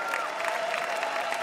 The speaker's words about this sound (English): All right. One more round of applause for our VIPs.